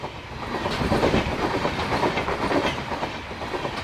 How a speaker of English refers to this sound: Her heritage house sits along the train tracks in Arosim, where a coal train is passing right now.